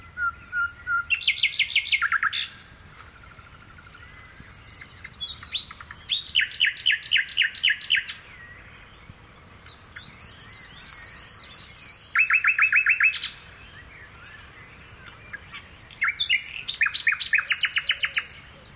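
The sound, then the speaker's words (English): A nightingale, recorded by Philip Radford in the countryside of Gloucestershire, England, sings alone in bursts of rapid, trilling phrases and piercing whistles, separated by short pauses, clear against a quiet outdoor background. “The British countryside is home to a vast array of creatures, but few whose song is quite as melodious as this nightingale, recorded by Philip Radford in Gloucestershire, England.”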